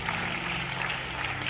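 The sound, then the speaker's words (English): A crowd claps steadily together as a clap offering to Jesus, a dense, even wash of many hands at a constant loud level, with a low sustained tone humming underneath. “Come on, give a big clap offering to Jesus.”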